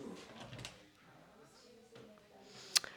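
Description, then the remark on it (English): An office door to a closed-door sales department meeting opens near the end with a sharp latch click, preceded by quiet rustling and faint indistinct voices. “I don't know what they're doing, but they have a closed door meeting going on. But we're going to barge in.”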